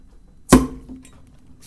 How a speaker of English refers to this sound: I guess first we're going to open a beer or two. You go first. You want this one?